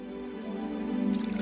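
Water trickles and bubbles over a steady low tonal hum, the liquid patter turning brighter and more rhythmic toward the end of the short moment.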